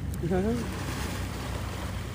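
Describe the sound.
Water lapping gently against a boat in a steady outdoor wash, with some wind noise; a brief voice sounds near the start.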